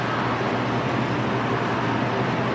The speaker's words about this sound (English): I thought somebody pulled up in their car.